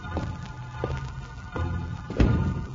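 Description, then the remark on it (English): Three slow, soft footsteps creep forward over a low steady hum, followed by a louder, sharper thump as a bedroom door that stood open an inch is pushed shut at night, after lights out. “When I heard my door being closed, I guess I was so scared for a second I couldn't move.”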